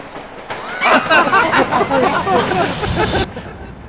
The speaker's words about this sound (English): The atmosphere and sound of the subway trigger Fiona into a dreamlike state